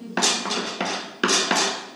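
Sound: knocking on a door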